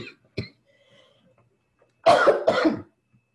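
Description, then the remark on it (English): A brief throat-clearing sound from a throat gone dry after talking a lot, then after a short pause two loud coughs in quick succession. No talking. “Cough it again.”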